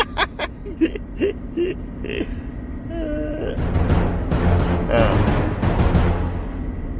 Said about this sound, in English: All right. That's what that noise is. My radio was on.